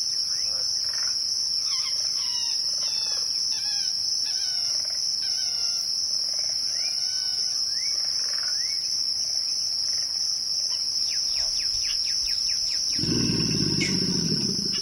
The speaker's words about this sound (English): We leave you this week with the voice of the Louisiana Bayou. Kim Wilson recorded this chorus of bird songs, frog calls, alligator grunts, and the squeal of an amphibian being skewered by a heron in the primordial waters of the bayou.